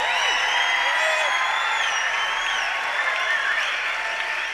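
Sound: theater audience applause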